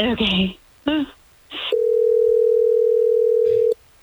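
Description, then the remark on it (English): A few brief bursts of voices, then a steady, clear telephone tone hums continuously for about two seconds before cutting off abruptly, like a dial tone or a single long ring, as radio station Hot 101.5 in Tampa Bay phones a man on air. “Let's try to get him on the phone.”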